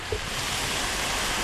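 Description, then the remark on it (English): Gentle waves breaking on the shore of Sword Beach in Normandy, one of the five D-Day beaches, heard as a steady, soft hiss of washing water that holds an even level throughout, with no voices. “Gentle waves break on the shore of Sword Beach, one of five used by the Allied armies on D-Day.”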